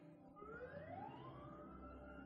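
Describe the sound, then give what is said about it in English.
An ambulance siren wails upward in a single rising sweep, fairly loud, over a steady low rumble of engine and traffic noise. “I didn't know what that ambulance was going to do next.”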